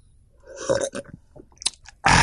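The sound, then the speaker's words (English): Someone takes a sip of a Coke Zero diet cola: wet slurping and a few gulping swallows, ending in a sudden loud, breathy exhale. No talking. “And speaking of that, let me get a good sip of this Coke Zero and let y'all hear me drinking this thing.”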